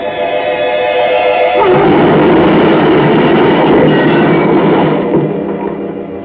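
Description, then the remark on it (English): A steady, droning car engine hum with a horn-like tone gives way to a loud burst of crashing, grinding noise as the car hits a truck broadside, rumbling on for several seconds before easing off. No one speaks. “Mr. Holman, we hit that truck broadside and...”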